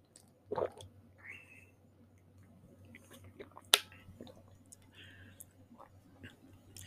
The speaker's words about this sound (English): Another sip of water.